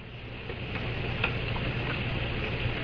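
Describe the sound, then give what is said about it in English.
Steady rain hiss with a fine crackling texture runs the whole way through, over a low constant rumble, during a storm in Lafayette. No voices are heard. “It's raining here, it's stormy outside, so I'm not so sure.”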